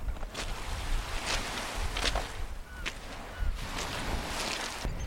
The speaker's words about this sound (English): And here's just the lulling sound of the sea.